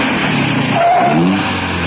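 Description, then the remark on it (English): A car engine roars, its pitch climbing as it revs and accelerates over a steady rumbling drone, with no voices present. “The car comes to fly.”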